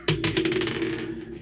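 A die rolled for a perception roll clatters across a hard table in a quick burst of rattling clicks, bouncing several times before settling on 17, clear with no one speaking.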